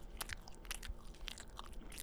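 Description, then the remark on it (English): Soft bites and moist chewing on an iced donut, with irregular sticky smacks and light crunchy bursts repeating over about two seconds, no talking. “Right now, when you eat this donut, one more time, one second.”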